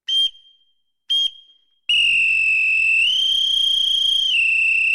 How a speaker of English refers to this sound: Well, I told you we'd all the bells and whistles this quarter, and if those were the bells, here are the whistles from the sea shanty group, … in Cove.